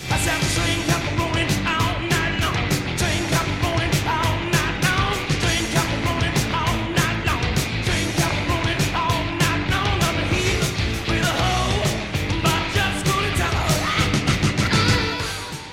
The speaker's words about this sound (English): And here comes the main riff. Now, wait a minute. Haven't I heard that riff somewhere before?